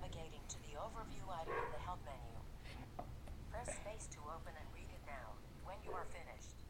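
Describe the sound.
A dog barks and yips repeatedly in short, loud bursts over a steady background hum with some muffled voice activity.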